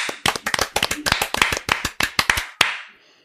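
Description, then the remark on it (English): A quick burst of sharp hand claps made as a sync marker to help with later editing, about a dozen in rapid succession with slightly uneven rhythm, fairly loud, ending on one final clap with a short echo. “do we need to do the clapping? Oh, yeah. I guess we do.”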